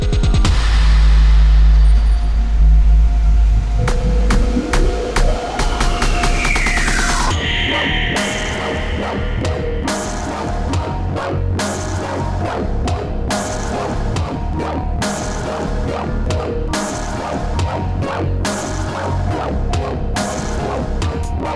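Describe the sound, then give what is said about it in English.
An electronic theme tune opens with a heavy bass drone and a rising sweep, then breaks into a loud, driving beat of steady, rapid percussive hits with no one talking. “All right, let's hit the theme.”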